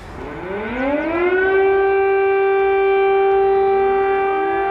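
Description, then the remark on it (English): An air raid siren wails in Kyiv, Ukraine, its tone climbing steeply over the first second and a half, then holding a loud, steady howl with a faint second siren rising underneath. “Raid sirens in Kiev, Ukraine.”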